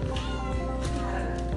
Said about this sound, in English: My cat is going nuts. I don't know what's wrong with him. Holy, what is up with you?